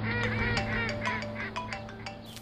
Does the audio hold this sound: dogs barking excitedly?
no